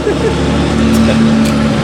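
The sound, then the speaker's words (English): A delivery truck's engine rumbles in an alley, a loud, steady low drone with a humming tone running underneath for the whole moment. “I don't know if we want to go by that truck.”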